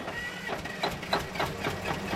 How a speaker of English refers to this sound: So how come the car starting doesn't attract the zombies? It's kind of an even drone. Okay. It's not very loud. It's in daylight quick. It doesn't carry very far.